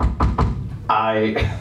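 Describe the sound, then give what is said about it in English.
Three quick, evenly spaced knocks land on a front door, followed by a short burst of someone's voice. “All of a sudden, there was a knock on the front door.”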